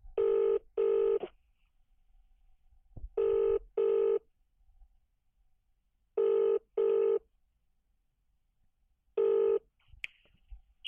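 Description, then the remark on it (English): A telephone ringback tone on an outgoing call to a randomly typed phone number: four double-burst rings spaced about three seconds apart, steady and clear, with near silence between them and a faint click at the end. “You have not won 5 cents because you did not pick up after the third ring.”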